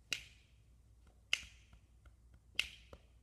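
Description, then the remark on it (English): Three sharp, crisp hand claps spaced evenly about a second apart, with softer faint taps in between, alone with no talking, clapping back a rhythm that was just counted out. “Up at two, two, te, te, three, te, up. Can you clap that for me?”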